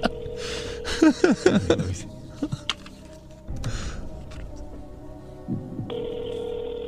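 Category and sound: signal or alarm, telephone dialing and ringing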